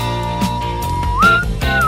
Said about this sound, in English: I think these mics are more conducive to it, though. To what? To whistling? Whistling, yeah. Try it.